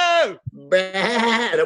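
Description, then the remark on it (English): A person imitates a sheep, letting out a drawn-out, wavering bleat after a short falling cry and a brief pause. The voice is loud and alone. “We'd go full sheep.”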